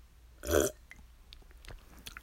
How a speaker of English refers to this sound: Let me take a sip of my lemonade.